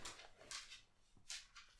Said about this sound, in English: And sorry, that's my lovely dog. He's lovely. What's his name? Charlie. Hey, Charlie. Charlie, up, go to bed.